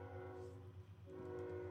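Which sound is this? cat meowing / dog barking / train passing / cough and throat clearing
train passing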